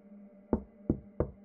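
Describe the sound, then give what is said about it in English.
Three firm knocks on a wooden door, evenly spaced, with a steady low hum in the background and no one speaking. “Amanda didn't even realise she'd started knocking.”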